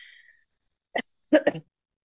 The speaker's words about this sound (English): I meant to mute. Don't mute. Just let those coughs fly.